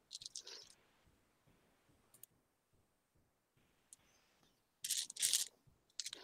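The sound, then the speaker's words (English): Plastic dice clatter and click as someone rummages through a large pile of dice looking for a d4, with a busy burst at the start, scattered light ticks in the middle, and a louder rattling bout near the end. “Oh my god, why do I have so many dice? I have a problem!”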